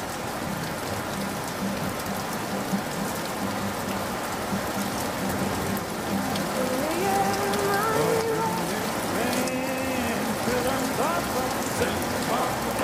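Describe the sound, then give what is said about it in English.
Steady rain patters densely on a hard surface throughout, a constant hiss of drops, with faint tonal, voice-like sounds drifting in partway through beneath the downpour. “And I've heard that into every life a little bit must fall, but you'll never catch me complaining about too much of that southern rain.”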